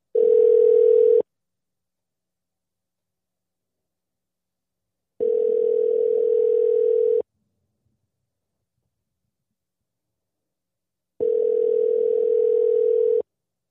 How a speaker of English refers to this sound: So, we're going to try to give him a call, despite his illness, and we'll see if he picks up.